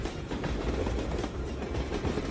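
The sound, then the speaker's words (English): A train rumbles steadily along the rails, with a dense low roar and faint rhythmic clacking of wheels running throughout, no voices present. “After that, run away from the track, but towards the upcoming train.”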